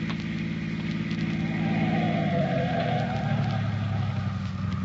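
A car engine hums steadily as it comes down a highway, then its pitch drops partway through as the car slows down to stop for a hitchhiking sailor, idling lower toward the end. No voices.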